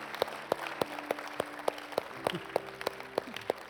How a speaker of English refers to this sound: Amen. Come on, let's give God a round of applause, can't we?